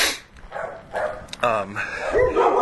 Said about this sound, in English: This alley is just dog filled. I gotta go the other way.